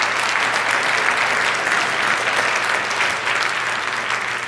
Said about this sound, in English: So for bringing all of that to our stage, I really want to thank you one more time with a round of applause from everybody.